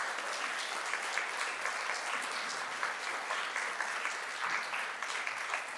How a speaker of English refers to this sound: Can we give those individuals a big round of applause?